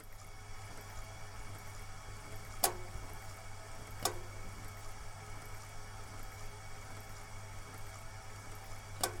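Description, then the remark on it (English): A radiator gives a few sharp, irregular metallic ticks, three spaced clicks over a steady low hum and faint watery hiss, with no one speaking. “Sorry about the radiator being so loud.”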